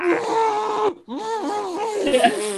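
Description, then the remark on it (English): A voice imitates retching, letting out two strained, groaning heaves split by a brief pause, the second longer and wavering in pitch, loud throughout with no other sound. “Yeah, it's my throw up noise.”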